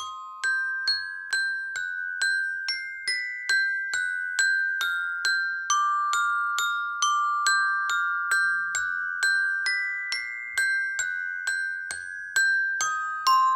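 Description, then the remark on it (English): Bridge chimes ring out in a steady, even rhythm, each bright metallic strike overlapping the last to form a slow, resonant melody, heard clearly with no voices. “he was sad to see it in disrepair, with chimes missing because of vehicle accidents and environmental wear.”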